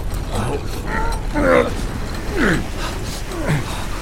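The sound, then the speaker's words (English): A heavy mechanical gate creaks shut, its grinding mechanism letting out three drawn-out, groaning creaks about a second apart over a steady rumbling clatter, fairly loud. “Rowena and Ayas were able to drag Soren beyond the gate before it closed behind them.”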